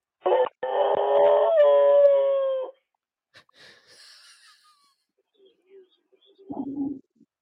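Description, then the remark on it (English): A dog lets out a loud, sustained howl with a wheezy, reedy tone lasting a couple of seconds, followed by faint scattered noises and a brief low burst near the end. “He's got a heck of a howl.”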